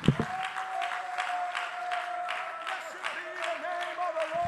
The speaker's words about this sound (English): Would you clap your hands and just give God about 30 seconds of glory and praise?